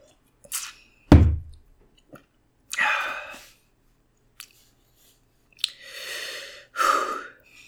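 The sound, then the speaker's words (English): Sipping of a drink: a short slurp, a soft gulp, then breathy exhales and a couple more drawn-in sips, with no talking. “Take another sip.”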